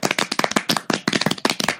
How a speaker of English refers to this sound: We need a clapping sound.